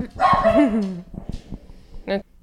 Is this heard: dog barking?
yes